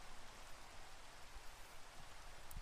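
Steady, even rain hisses without a break, a dense wash of fine patter with a few soft, low thumps near the end. No voices are heard.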